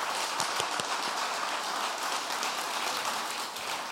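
A crowd applauds steadily, many hands clapping in a dense, continuous patter that stays fairly even in volume throughout, with no voices standing out.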